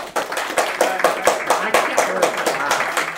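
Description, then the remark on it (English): Scattered applause from a small audience answering a host's call for a round of applause, a handful of hands clapping in uneven, overlapping bursts that keep going at a steady, moderate volume for a few seconds. “Round of applause for Bagels.”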